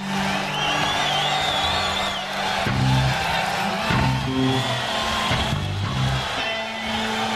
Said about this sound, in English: Sounds like an unruly crowd.